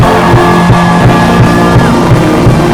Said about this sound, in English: In the name of Jesus, give the Lord a shout, a clap.